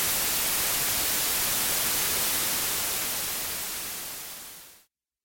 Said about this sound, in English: Well, folks, I think that break time is here, so enjoy this soothing white noise as we prepare all that great stuff for your listening and laughing pleasure.